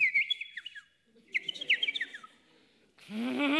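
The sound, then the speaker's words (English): A person mimics a bird's call, chatting back to a bird, with two bursts of quick, high chirping notes, fairly loud, and then a voice starts to speak right at the end. “That bird.”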